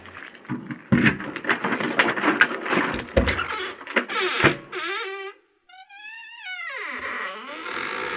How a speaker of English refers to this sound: let's get your keys out, mate.